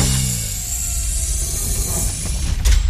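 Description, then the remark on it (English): A loud mechanical door-opening effect, sci-fi in style, with a steady grinding, ratcheting rumble and hiss that builds to a heavier clunk at the end. No one speaks. “Open the podcast doors, Hal.”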